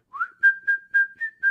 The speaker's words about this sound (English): We went and took our Christmas photos Sunday afternoon. And I started whistling.